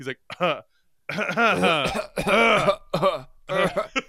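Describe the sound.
A voice acts out a man's sound of disgust: a drawn-out, strained groan, then a few short, forced coughs and throat-clearing bursts, as if water went down the wrong pipe, to cover the reaction. Fairly loud, no actual words spoken.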